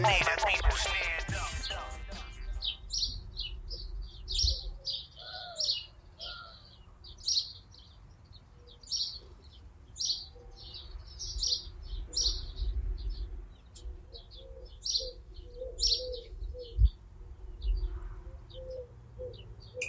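Several birds sing and chirp in a backyard in spring, April 2020, in short, repeated high-pitched phrases throughout, with a softer low cooing at times and a faint outdoor hum in the background.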